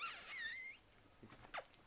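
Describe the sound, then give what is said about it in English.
A female dog whines in a long, high-pitched, wavering tone, then lets out a few brief, sharp yips. Fairly quiet overall, with no one talking. “She's all right Bella. Now. Yeah, quit barking.”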